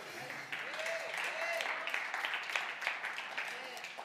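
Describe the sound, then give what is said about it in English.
An audience applauds, a dense, steady patter of many hands clapping that holds at an even level throughout, with a few voices rising and falling underneath. “We clap for that.”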